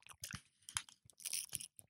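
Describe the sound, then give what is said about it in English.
Crisp crunching as someone bites and chews a flaky pastry with a soft, gooey middle, several irregular bursts of brittle crackle with brief pauses between chews, no talking. “It's just a perfect combination of crunch and softy, gooey middle.”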